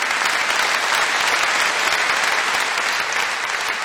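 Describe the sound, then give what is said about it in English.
An audience applauds steadily, dense clapping at a loud, even level for a few seconds with no voices on top. “You can applaud that.”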